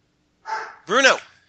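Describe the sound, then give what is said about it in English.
A dog barks twice, a short rough bark followed by a louder, higher, more tonal one, with brief silence before them. “The dog disagrees.”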